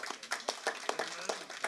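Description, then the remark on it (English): Light, scattered audience clapping for a woman after prayer for the pain in her head: a handful of sharp, uneven claps in quick succession, fairly soft overall, with no voices over them. “Oh, you can clap louder than that.”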